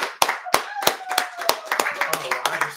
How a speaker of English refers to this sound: can we get one more round of applause?